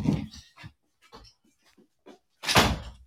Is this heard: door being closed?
yes